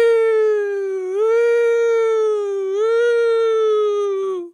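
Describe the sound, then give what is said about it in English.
A single voice imitates a police siren with a long, steady wailing tone that swells upward in pitch twice before cutting off, loud and alone with no other sounds. “You hear a police siren.”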